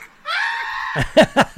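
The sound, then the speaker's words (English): A loud human screech holds one shrill pitch for most of a second, then breaks into three short, rhythmic shrieking bursts. No one is talking. “Imagine if we sent that screech to the theater.”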